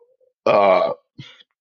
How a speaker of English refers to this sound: Yeah, pardon me for my, you know, my burp and my coughing. I've been smoking since that was two. And I get gas because I drink beer, you know what I'm saying?